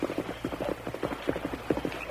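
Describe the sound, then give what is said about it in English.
A horse's hoofbeats clop along in a steady, galloping rhythm as a rider passes by, crossing a bridge toward the Turner ranch, moderately loud, with no voices over them. “Tonto, whoever that rider was, he's crossed the bridge.”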